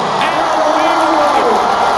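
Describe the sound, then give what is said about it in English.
A large stadium crowd of Cardinals fans cheers as number 50, Uncle Charlie, is introduced to perform the national anthem, a steady, dense roar of thousands of voices blending into continuous loud noise with scattered shouts and whoops, sustained throughout without pause. “So they bring him out. It's full crowd.”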